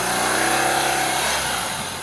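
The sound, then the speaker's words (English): A police motorcycle engine revs loudly as the officer arrives at a Chevron gas station at a very busy intersection in Los Angeles, a steady rumbling drone with road noise that eases off slightly toward the end; no one speaks. “For our listeners, really fast, and not our watchers, what you have is a police officer on a motorcycle arriving to a Chevron gas station at a very busy intersection in Los Angeles.”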